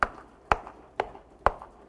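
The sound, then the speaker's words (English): Four sharp knocks on a chair, evenly spaced about half a second apart, each a crisp wooden thud standing out over a faint background murmur of a sermon audience knocking and tapping on their chairs. “Knock on your chair. Tap your chair. Just hit it.”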